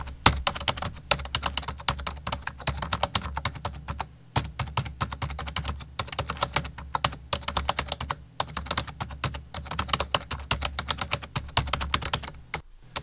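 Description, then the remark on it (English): Rapid, continuous clatter of keys on computer keyboards as people write code, dense overlapping clicks with brief pauses, fairly loud, no voices. “typing furiously on their computers, writing code.”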